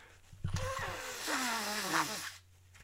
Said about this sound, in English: But I'm just gonna blow my nose.